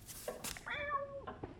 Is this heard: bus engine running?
no